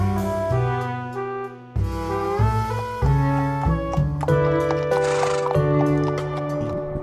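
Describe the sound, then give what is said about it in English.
A horse whinnies and hooves clip-clop steadily, mixed into a bright musical jingle with stepping melodic notes introducing the Horse House voicemails segment; no one speaks. “Now it's time to dip into the Horse House voicemails.”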